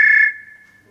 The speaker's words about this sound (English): Telephone. Many of our phones nowadays have all kinds of tunes attached to them. That's a kind of old fashioned telephone.